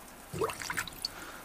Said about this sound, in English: Water, water everywhere, especially in the sink.